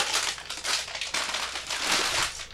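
Dry, crunchy crackling and rustling of Dongding hongshui oolong tea leaves being roasted, a steady bright crinkle with repeated surges of louder crunches, no voices.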